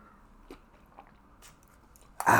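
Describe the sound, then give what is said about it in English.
Someone sips a Seymour shake: a few soft wet mouth clicks in near silence, then a sudden loud, noisy slurp through a straw at the very end. “As I sip my Seymour shake.”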